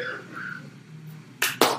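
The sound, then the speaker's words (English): Three sharp, loud hand claps in a studio in quick succession near the end, following a stretch of faint, quiet background tones. “Oh, we love those in-studio claps.”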